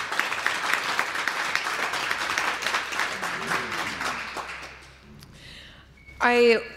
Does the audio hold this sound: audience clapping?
yes